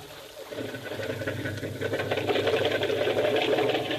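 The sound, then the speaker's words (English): A small outboard boat motor sputters to life after a brief pause and settles into a steady, rapid mechanical chugging, fairly loud, with no one speaking, as the boat is held in the surf. “Hold it into the surf till he gets the motor started.”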